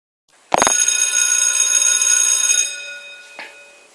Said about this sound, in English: All right, my listeners, you heard the bell. You heard the bell. Class is in session.